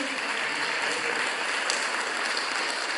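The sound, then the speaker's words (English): Steady, dense applause from an audience, a continuous crackle of many hands clapping at an even loudness for the whole stretch with no talking over it. “Feel free to clap anytime. It's very encouraging.”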